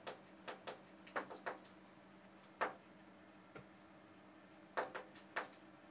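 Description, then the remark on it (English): A bird pecks at a window glass: sharp, hard taps arriving in irregular bursts, some in quick doubles or triples, separated by pauses over a faint steady hiss, with no talking. “There's been a bird pecking on my window.”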